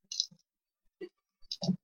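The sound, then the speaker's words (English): Dice rolled for damage clatter across a table in a few quick, sharp bursts with brief pauses between, ending in a louder rattling tumble, with no voices. “Oh, that was too many dice, though, for damage.”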